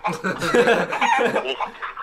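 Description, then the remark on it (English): A chicken named Fred clucks busily, a steady run of loud, squawky calls that carry without pause through the whole moment. “You getting punked out by a chicken?”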